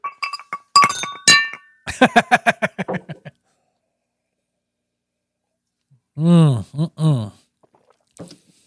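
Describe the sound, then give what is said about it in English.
Glasses clink together in a toast, a few bright ringing taps, followed by a quick rattle of lighter clicks, then a short pause before brief voiced murmurs. “When are we going to drink this? Oh, right now. Cheers.”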